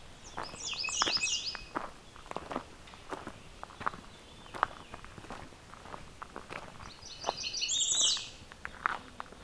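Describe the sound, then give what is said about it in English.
An American redstart sings a thin, very high, buzzy song resembling a Blackburnian warbler's, heard twice a few seconds apart, while footsteps crunch steadily throughout. “So we got a red start that's kind of mimicking the Black Burning Warbler song.”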